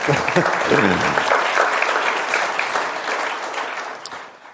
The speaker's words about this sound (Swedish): Bra, applåder. Bra, tack.